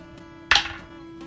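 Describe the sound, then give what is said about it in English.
A single sharp thwack of the last arrow of an archery game striking a target, fairly loud, with a short ringing decay over a low steady hum; no one speaks. “It's my last arrow.”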